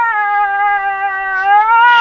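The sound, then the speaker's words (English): A cat lets out one long, loud, drawn-out meow lasting about two seconds, a steady wailing tone that rises slightly at the end, with no talking. “She's moaning again, which is.”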